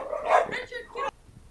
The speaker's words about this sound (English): Yes. So we had a little bit of a dog hubbub